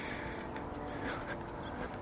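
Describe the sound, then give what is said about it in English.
Faint dogs bark, a few scattered yips and woofs barely rising above a steady outdoor background hiss. “other than that train, there's not a lot to hear. And the dogs.”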